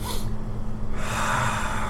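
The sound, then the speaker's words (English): A person imitates the character Chalfo sniffing while looking someone up and down: breathy nasal snorts, a short burst, a brief pause, then a longer run of noisy sniffs. No one speaks. “Who is also just looking you up and down and sniffing at this point.”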